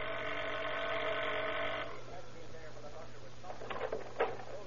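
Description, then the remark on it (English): A steady electric doorbell buzz sounds for about two seconds as a man rings the front-door bell of a house at night, then stops, followed by a couple of soft knocks or rattles like a door being handled. “walks to the front door, rings the bell.”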